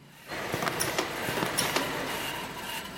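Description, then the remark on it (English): A conveyor belt inside a huge lettuce greenhouse runs with a steady mechanical whir, broken by irregular creaks and sharp rattling clicks. There is no talking. “Well, all this creaking and rattling is the noise of a conveyor belt inside a lettuce greenhouse.”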